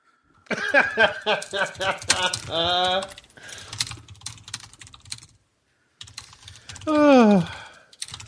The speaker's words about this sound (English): You have a loud keyboard. I mean, it's tracking on the waveform for the recording. I can tell when you hit enter. Or no, it's the space bar. I'm sorry. The highest peaks are the space bar.